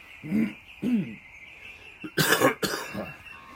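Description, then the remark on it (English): A person coughs several times, with a couple of short throaty hacks followed by a harsher, louder burst of coughing, then a softer cough trailing off. “I got a cough, sorry.”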